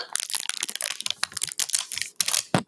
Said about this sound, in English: I took the wrapper off the cornmeal.